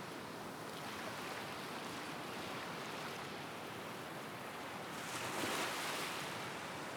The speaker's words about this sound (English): The sound of the waves, which we can't get enough, can we?